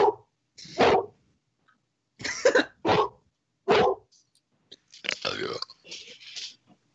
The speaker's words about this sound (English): What kind of dog is that? She's a great ass. Pain mix. A great pain in the ass mix.